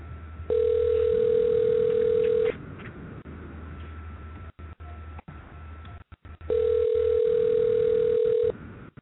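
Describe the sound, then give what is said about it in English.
A phone ringback tone from an outgoing call sounds twice, each steady electronic ring lasting about two seconds with a long pause between, heard over a low background hum with no one speaking. “So we're going to see if he answers his phone real quick.”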